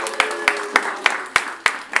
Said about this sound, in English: Okay, you guys, big round of applause and give a big warm welcome to Elliot Kalin.